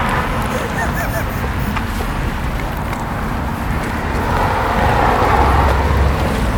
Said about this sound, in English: Car's coming here.